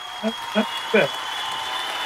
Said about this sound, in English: See, we've got the live audience applauding just for you, my friend.